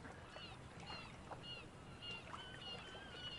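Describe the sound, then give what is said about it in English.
Repeated high, drawn-out seagull cries sound several times, overlapping each other above a steady wash of water or surf noise. “There's too many seagulls here in Barovia.”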